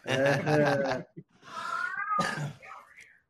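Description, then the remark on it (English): A cat named Josie meows a few times, with loud, drawn-out, wavering cries separated by brief pauses. “Tell your cat we said hi.”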